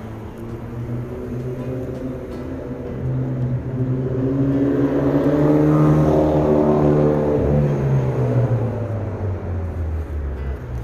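Steady road traffic with a car accelerating past nearby, its engine rising in pitch and swelling louder midway before easing off, over a constant low rumble of other vehicles.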